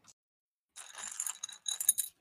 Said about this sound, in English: As I dig through the dice, define 4d12.